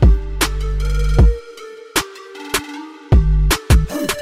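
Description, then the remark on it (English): A mobile phone rings with an incoming call, playing a loud musical ringtone: punchy bass hits and bright melodic tones repeating in a steady rhythm, with no talking over it. “Oh my God, I found my phone. Shut up. It was right here. Wait, hold on. Wait, stop. Okay. I'm getting a phone call”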